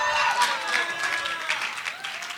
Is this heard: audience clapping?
yes